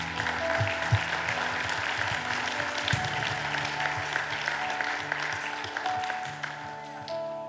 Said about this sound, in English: Woohoo, I see you. We applaud you. Thank you.